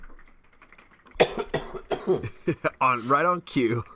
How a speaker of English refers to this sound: I've been coughing up a storm.